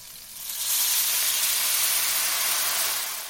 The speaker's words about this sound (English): When it turns pale golden, pour in the rice. Listen to the rice grains. And you will hear them crackling imperceptibly while you're toasting them. It is a sign you can pour in the wine.